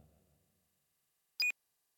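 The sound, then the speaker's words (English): Slice pushes a button on a console to close the office door, giving a single short, loud electronic bleep with a bright high tone. Before it, a faint low rumble fades out into silence. “The door closes to the office as Slice pushes a button on a console.”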